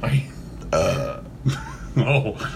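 A loud burp after drinking an energy drink, rumbling out in several croaky bursts over a couple of seconds, with brief pauses between them.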